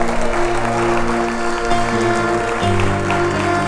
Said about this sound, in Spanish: Ahora, ¿te atreves a dar un aplauso al que vive, al que reina?